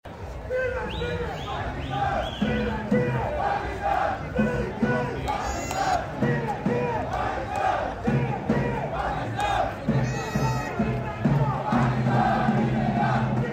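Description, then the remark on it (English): A large crowd of Pakistan cricket fans at the SCG cheers and chants continuously, a dense roar of many voices with rhythmic swells and shouted calls rising above the steady, loud din throughout. “They are the sounds that filled the SCG tonight.”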